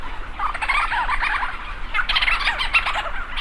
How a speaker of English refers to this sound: Thousands of leech storm petrels circle overhead, swooping and calling into the dark. … captured these sounds for his CD he calls ….